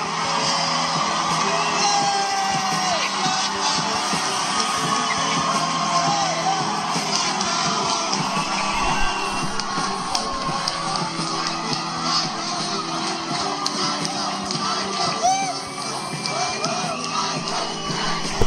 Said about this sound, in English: I just wish the crowd would shut up.